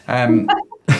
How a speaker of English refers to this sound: excuse me while I cough my guts up.